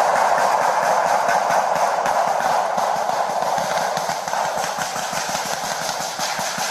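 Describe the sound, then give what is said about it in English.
Dozens of rapid gunshots, not target practice, crackle close by police officers on patrol in a dense, nearly continuous barrage, steady and loud across the whole stretch with a heavy rumbling wash behind the sharp reports and no voices. “Officers appear to be confused until they figure out it's not target practice and gunfire is close by.”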